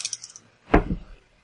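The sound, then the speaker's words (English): Dice rattle lightly, then land on a table with a couple of quick clattering knocks and settle, rolled for channel attempts in a tabletop game's magic phase and coming up two ones. Fairly quiet, with no talking. “Wow, that was an epic channeling attempt of double snakes on my part.”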